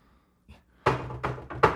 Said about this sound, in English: They walk up to the wall, and they pound out a peculiar rhythm on a certain brick that's on the doorway.